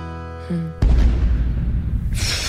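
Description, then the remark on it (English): A few soft musical notes at the end of a song on radio station Mix 106.3, then a sudden loud explosion sound effect bursts in, followed by a deep rumbling roar that lingers with a hissing tail for nearly two seconds. “I've always wondered if that song would be improved by the explosion at the end, and it turns out I was right.”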